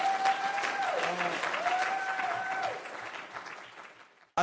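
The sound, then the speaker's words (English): A crowd applauds steadily while one audience member lets out a loud, sustained high-pitched scream that rises and dips over the clapping before fading, the applause trailing off at the end. “I don't know why that person is screaming so loud, but I hope it's because they agree with this statement that I'm about to say.”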